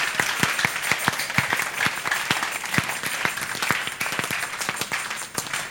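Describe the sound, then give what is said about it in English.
A group claps and prays together for one minute in a steady, fairly loud stream of overlapping hand claps, with sharper individual claps standing out over a constant wash of applause. No clear speech rises above it. “So you are clapping and praying for 1 minute.”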